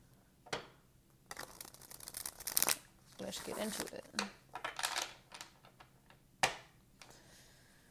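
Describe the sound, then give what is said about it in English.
A Rider-Waite tarot deck being shuffled, with crisp bursts of riffling and flicking in irregular clusters, while a voice speaks briefly at the start. “Shuffling the Rider-Waite Tarot.”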